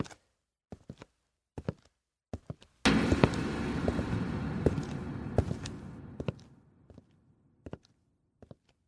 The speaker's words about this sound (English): You guys are getting ready to leave the restaurant, but before you leave the office, you hear footsteps approaching the security room.